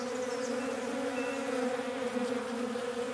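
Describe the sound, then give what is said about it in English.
A steady drone of bees buzzing in and out of a tree stump in the woods, a continuous hum with a few small swells, filling the whole stretch with no voices. “And right in front of him was a tree stump, and he noticed that bees were buzzing in and out of the tree stump.”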